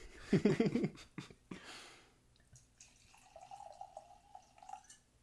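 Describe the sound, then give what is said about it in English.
A drink is poured from a freshly uncorked bottle into a glass: a few gurgling splashes at first, then a steady, quiet stream whose pitch rises gradually as the glass fills. No one speaks. “All right, give us a pull then. All right. Say when.”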